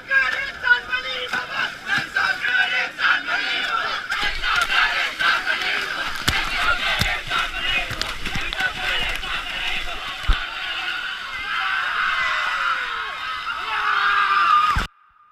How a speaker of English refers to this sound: until finally on day 21 they reach the river's mouth on the Indian Ocean and everyone sprints over the sand and into the sea while laughing and crying and congratulating each other, like in this audio from 2016.